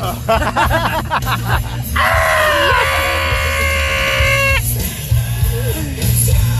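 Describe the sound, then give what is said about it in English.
A person lets out a loud, sustained scream lasting a few seconds, preceded by short bursts of shouting voices, with a steady low rumble underneath throughout. “I scream like that every time I'm pooping on the toilet.”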